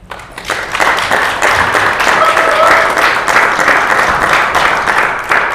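A steady round of applause from a meeting audience, many hands clapping in a dense, sustained patter that holds at an even loudness for several seconds, with faint voices mixed in.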